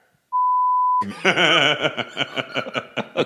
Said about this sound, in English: Can you just say the company and we'll beep it out?